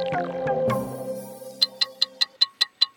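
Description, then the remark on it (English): A sustained musical chime or bell tone fades out, then a loud clock ticks steadily at a brisk, even pace, about eight crisp ticks. “That's the clock ticking really loudly on our Christmas charity campaign with Lego.”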